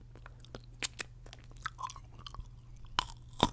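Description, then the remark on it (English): Crunchy chewing and biting on hard coconut candy (turrón), a Colombian snack, with sharp irregular cracks and crunches spaced across a few seconds, the loudest bites near the end, over a faint low hum. “It's hard to chew.”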